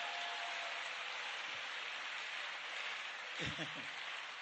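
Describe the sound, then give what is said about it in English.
A church audience claps for the Lord during a sermon, steadily and densely for several seconds, a full, continuous wash of applause with brief shouts and voices rising through it near the end. “Give the Lord a glorious clap.”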